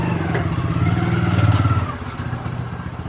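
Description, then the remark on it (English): A motorbike engine rumbles loud as a woman, an agriculture officer, arrives on it at a biocontrol group's centre in Kerala, India, its throaty putter swelling to a peak before easing back into a steady idle, with faint clatter around it. “I drop in on the nerve centre of one of the most energetic groups, headed by a cheerful, determined woman in a brilliant blue and green tunic over bright green pants, who arrives on a motorbike.”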